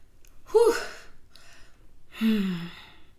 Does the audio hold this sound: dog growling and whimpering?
no